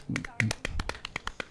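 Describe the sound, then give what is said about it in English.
A small audience in a studio claps briefly during an interview, a loose scatter of sharp, uneven hand claps, with some low vocal sound mixed in beneath. “Normally, there's nobody clapping. It's just like me and my girl in the studio. So. We got a little audience.”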